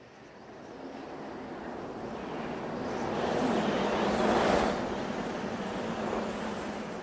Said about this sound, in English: Bitter wind slashed me as I opened the car door. I struggled out into the tempest and slammed the door behind me. Wind and snow struck my face.